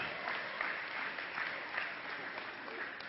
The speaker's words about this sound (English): You can clap for that.